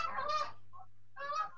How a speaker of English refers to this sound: And then there were geese. Oh, I wish there were geese. Where'd the geese come from? I wish there were geese. The geese would protect me.